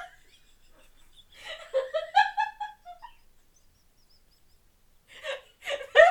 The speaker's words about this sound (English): I got the hiccups. Sorry about that, guys. Had the hiccups,